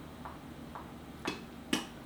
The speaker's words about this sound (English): Oh, we got the, it's ticking, it's doing the...